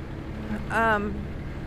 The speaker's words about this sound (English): Hold on. Passing by a very loud truck.